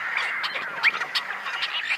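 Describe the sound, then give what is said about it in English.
A dense chorus of many tricolored blackbirds in a California marsh, harsh snarling calls overlapping continuously at steady volume, with a few sharper squawks poking out of the din. “And what sounds like a snarling catfight? Are the combined voices of tricolored blackbirds in a California marsh.”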